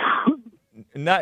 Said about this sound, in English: Is that a corona cough?